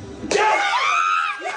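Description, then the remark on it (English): A crowd of men breaks into loud cheering and shouting all at once, holding the excited roar for about a second before it dips and a fresh wave of yells starts up. “The men are cheering. You hear that? The men in the background are cheering.”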